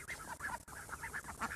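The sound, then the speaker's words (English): Several ducks, kept on a farm to dig, fertilize and weed, quack in a rapid, overlapping chorus of nasal calls, fairly steady, with no voices present. “The ducks do the job of a tractor in their digging, fertilizing and weeding.”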